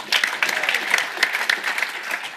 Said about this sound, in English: round of applause for those peas.